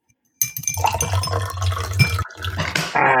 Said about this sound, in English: And then you just pour them into the stirring ice, the stirring glass with ice, and you give it a bit of a stir.